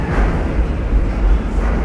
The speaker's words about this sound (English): Wow. These trains are loud.